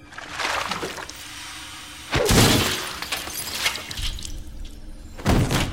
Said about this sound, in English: And the other one is, admittedly, one of the best kills in the entire franchise, where Jason takes a scientist's head, dunks it in liquid nitrogen, and then smashes it on a counter.